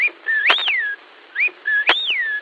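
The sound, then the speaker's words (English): A person whistles an imitation of a North American birdcall: two close, clear phrases of high sliding notes that swoop up and down, each opened by a short chirp and a sharp click. “Here is … again with a few examples of the birds you can hear in North America.”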